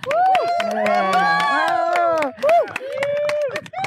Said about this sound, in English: It's really strange to see a bunch of protesters cheering at the news that the cops are on their way.